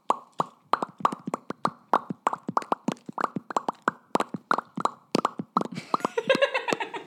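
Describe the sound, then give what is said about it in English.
A rapid, irregular string of wet popping plops, like bubbles blown into liquid right at a microphone, fairly loud and continuous, with a brief burble of higher chattering sounds near the end. “Please make bubbles with me!”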